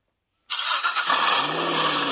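A car engine suddenly roars to life after a moment of silence and revs loudly, its pitch climbing as it holds a steady, close growl with no one talking.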